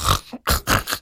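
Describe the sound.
On the Sok FM 104.8 Morning Show, a voice mimics someone snoring in bed after falling asleep first, with three loud, raspy snorting bursts in a steady rhythm, each a rough nasal rattle separated by brief pauses.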